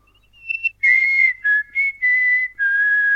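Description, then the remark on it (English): A person whistles a short call, imitating a whistle that used to go around the ground in the late 70s: a few quick chirps, then a run of sustained, clear notes that dip and rise slightly in pitch, with brief gaps between them and no talking. “I can't do that laughing. I can't whistle.”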